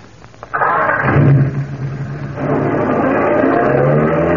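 A car engine cranks and catches, then revs loudly and settles into a steady roar as the vehicle pulls away, with no voices over it.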